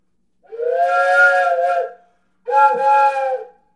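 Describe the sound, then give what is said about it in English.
Two long blasts of a 4-in-1 multi-pitch whistle with its stoppers put all the way up for a train sound, each a steady, loud chord of several stacked tones with a breathy hiss, the first about a second and a half, the second slightly shorter. “And then you could put the stoppers all the way up for a train.”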